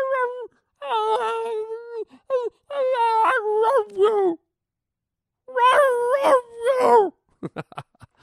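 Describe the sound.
A dog howls and moans in drawn-out, wavering bursts, rising and falling almost like speech, as if saying 'I love you', with a pause in between and a few short sharp sounds at the end.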